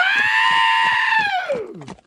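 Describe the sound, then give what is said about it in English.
A goat lets out one loud, drawn-out scream that holds steady, then sags downward in pitch, set over a pulsing musical beat in a rock song parody. “…, Goat Edition, …, YouTube, bring it up.”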